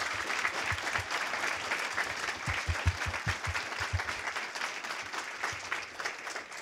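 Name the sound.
audience applause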